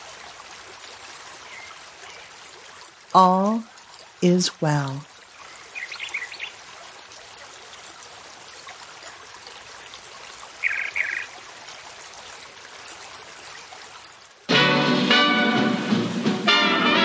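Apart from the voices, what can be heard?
flowing river water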